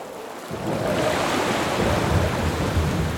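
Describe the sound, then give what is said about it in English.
Loud, churning ocean waves crash continuously while strong wind roars over them, a dense stormy wash that swells in after a brief quieter start and stays heavy throughout. “navigated skillfully until nightfall when the wind sent great waves that took control of their boat.”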